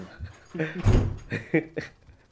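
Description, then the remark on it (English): An unlocked door is opened and shut, with a heavy low thud in the middle and a few lighter clicks and rattles around it, with faint muffled voices in the background. “The door's not locked.”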